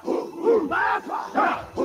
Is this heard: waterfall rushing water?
no